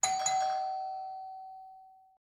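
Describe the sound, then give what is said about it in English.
A doorbell chimes with two quick strikes, a ding-dong, then a clear tone rings on and slowly fades over about two seconds. Nothing else can be heard. “And then the doorbell rings.”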